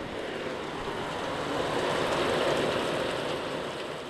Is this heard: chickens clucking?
no